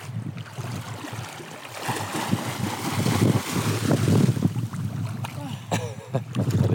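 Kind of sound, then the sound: nature, wind blowing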